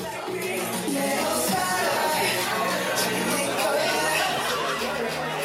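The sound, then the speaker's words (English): A steady wash of chatter from a standing-room-only crowd fills a Melbourne nightclub hosting an event, many overlapping voices blending into a loud, continuous murmur with occasional brief laughs rising out of the din. “Several guest speakers spoke to the standing room only crowd gathered at the Melbourne nightclub hosting the event, including activists involved in the Comfort Women campaigns here in Melbourne.”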